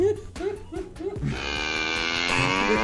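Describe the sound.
A cow lets out a single long, drawn-out moo, loud, right after a few brief voice-like syllables.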